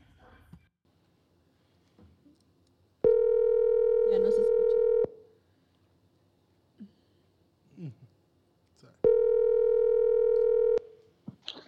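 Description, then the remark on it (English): A telephone dial tone sounds as a call is being placed, in two loud, steady electronic bursts of about two seconds each, separated by a pause, with faint murmuring and small noises in between. “All right, let me get him on the phone.”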